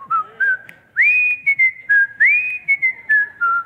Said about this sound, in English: Good chance for me to show off my whistling skills there, right? One of the great whistling songs of all time.